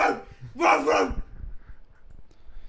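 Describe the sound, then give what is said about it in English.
A person's voice imitates a dog barking: a short yelp followed by one longer, loud, rough bark, then quiet low background noise. “I kept on barking.”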